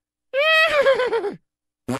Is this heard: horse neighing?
yes